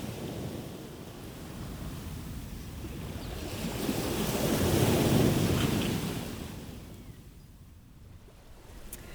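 Cold sea waves wash against the shore in South Devon, England, in a steady, broad rush, swelling to a louder surge midway before drawing back, with a light wind in the background and no voices.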